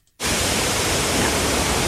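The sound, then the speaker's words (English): After a brief moment of silence, loud, steady white noise, used to mask background or disturbing sounds, switches on abruptly and continues as an even, unbroken hiss with no voices or other sounds. “This is the noise that you use to mask background noise or disturbing noises. So it sounds a bit like an air conditioner, a humming refrigerator, and it's supposed to block out the sounds around you.”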